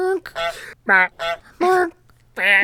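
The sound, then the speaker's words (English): A goose honks repeatedly, about five loud, nasal, brassy calls in quick irregular succession, with brief gaps between them and a low hum underneath; sounds from the Untitled Goose Game. “Just the sounds from the untitled goose game.”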